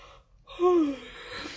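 yawn

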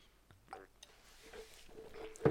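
sipping ginger ale

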